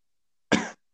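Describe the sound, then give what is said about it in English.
A single short cough bursts out loudly and fades within a quarter second, with silence before and after it. “It's just a cough.”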